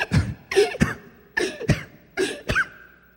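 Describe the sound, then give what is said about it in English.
A voice imitates a woman lying in bed gasping for breath: three pairs of sharp, ragged, raspy intakes with short pauses between, the last one trailing off into a thin, strained tone. “Now she's laying in bed gasping for breath.”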